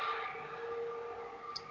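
A phone goes off with a steady, sustained electronic tone that holds level throughout, plus a brief higher blip near the end. No one speaks.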